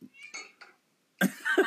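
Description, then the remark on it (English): A cat meows several times: a few short, softer chirping meows, a brief pause, then a louder, strained two-part meow at the end. “Your cat just said, okay.”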